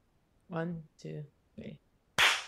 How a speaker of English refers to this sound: Okay. We should clap. All right, fine.